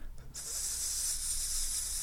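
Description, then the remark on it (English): Steady vinyl record surface hiss from a fresh record on a turntable begins after a brief quiet moment and continues unchanged, a bright, airy noise over a faint low rumble. “Do you mean that when you crack open a fresh record and put it on the turntable, you want to hear this?”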